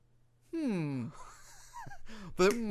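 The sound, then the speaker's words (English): A voice imitates sleeping sounds: drawn-out, sliding groans and murmurs, a short breathy catch, then a louder wavering moan at the end, with no actual words. “Then why are you making sleeping sounds with your mouth?”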